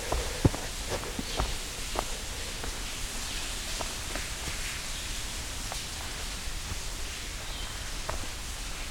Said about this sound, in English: Still a very interesting waterfall. Some neat rock formations here.